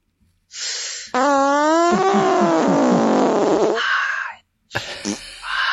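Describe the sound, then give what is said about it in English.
A loud, drawn-out fart sound played by the Alexa skill Big Fart: a breathy hiss swells into a long buzzy, wavering blast lasting a few seconds, followed by a brief sputtering burst after a short pause. “Would you like me to play another fart sound?”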